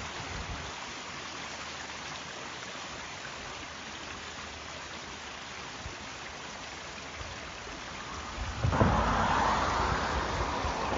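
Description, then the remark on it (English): Steady rain hisses throughout, then near the end a louder wash of tyre noise swells up as a car approaches on the wet road over a bridge across a river. No one speaks. “There's another car coming, I think.”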